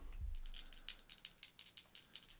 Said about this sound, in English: Just roll dice and I'll do a high-low. Okay. So high, low. So high is Deadpool, low is Wolverine. Okay. So why are you rolling multiple dice? Just for the sound effect.